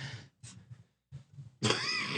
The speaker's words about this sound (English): My God. This is getting bad. I apologize to Jones for this cough.